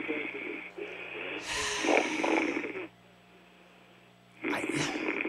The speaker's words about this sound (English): No snoring tonight. Yeah. Snoring is back.